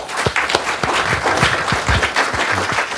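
Sustained audience applause from many hands, a dense crackling wash of claps at a steady, fairly loud level for the whole stretch, with no voices over it.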